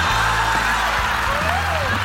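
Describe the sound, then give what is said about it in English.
A loud, dense wash of crowd noise as an audience applauds guest Kara Swisher, with steady clapping blended with whoops and cheers, sustained at an even level throughout without any clear talking. “Guys, please, a round of applause.”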